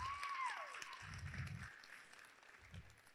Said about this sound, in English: Give him a clap.